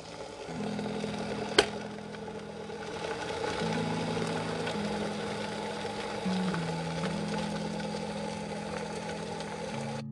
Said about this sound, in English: Heating a cup of water.